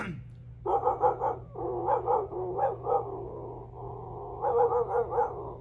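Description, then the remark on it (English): A man imitates a barking dog: loud bursts of rapid woofs in uneven clusters over a low steady hum, with no ordinary talking. “It is his ability to bark like a dog.”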